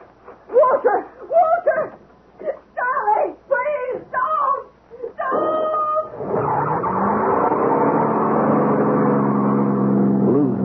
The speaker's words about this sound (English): Drowned by the roar of the engine.